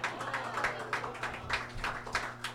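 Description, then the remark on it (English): Light, scattered applause from a small audience: a thin patter of uneven claps at a soft level, with a steady low hum underneath and no voices. “That was a very respectful applause from you guys.”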